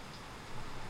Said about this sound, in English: I don't know if you can hear that or not, that rain.